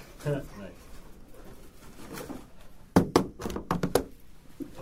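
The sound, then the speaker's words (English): An office door is pushed shut, a burst of sharp thuds and clattering knocks as it closes and latches, following a few seconds of soft voice and room noise. “I close this because, like, people try and get in here.”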